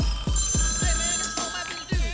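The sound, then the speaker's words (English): A telephone on the Heine House Hotline rings steadily and loudly, its bright trilling tone running throughout, while a regular low thumping beat pulses underneath. No one speaks. “Gonna hop into the phones here.”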